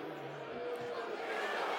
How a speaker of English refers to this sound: You can hear the booing all around me.